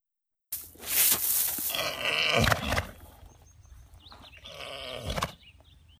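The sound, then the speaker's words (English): A mare groans while foaling: two drawn-out, strained vocal groans with a pause between, fairly loud, over faint background noise and no talking. “So here's what a groan sounds like.”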